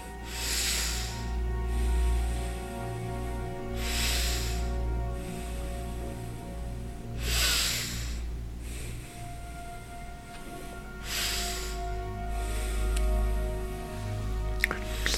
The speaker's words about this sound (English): Please keep on breathing. Deep breathing, you want to hear the air flowing through your nostril.